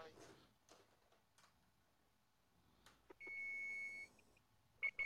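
timer beeping

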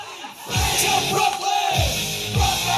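audience clapping and cheering

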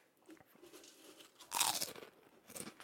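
crunching potato chips

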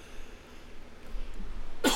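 cough

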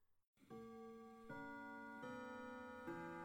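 clock ticking

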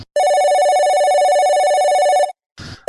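telephone ringing

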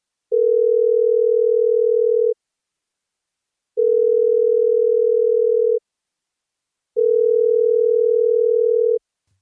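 phone call ringing unanswered

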